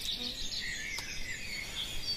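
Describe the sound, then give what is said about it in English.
A great tit calls faintly in the background, high thin 'teacher, teacher' notes repeating steadily over a soft outdoor hiss, with a single brief click partway through and no talking. “And there's one that's going now in the background, teacher, teacher, teacher. Mm-hmm. That's the great tit.”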